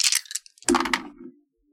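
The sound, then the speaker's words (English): Four dice are dropped all at the same time onto a hard surface in a quick burst of sharp clicks, then a brief rattling tumble with a ringing tone that fades to silence. “We generated one anomaly, so that's four dice.”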